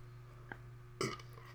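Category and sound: human body sound, burping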